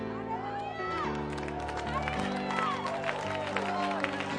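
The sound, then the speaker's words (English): A church audience stomps their feet together, a dense, continuous rumble of thuds over sustained organ chords, with voices shouting and cheering throughout. “Now stomp your foot.”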